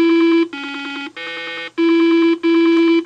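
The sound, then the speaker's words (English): Five loud, buzzy electronic tones in quick succession, each about half a second long, shifting between the four tones of Simon, Milton Bradley's late-1970s electronic memory game toy, playing a sequence, with no talking. “By the late 70s, toy and game makers Milton Bradley proved that with just four tones, you could make a toy that helped define a generation.”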